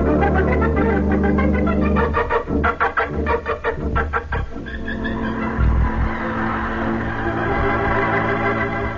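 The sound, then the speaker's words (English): A police prowl car approaches, its loud, blaring siren wailing steadily and pulsing with a throbbing rhythm before settling into a sustained drone; no one speaks. “Prowl car just coming this way.”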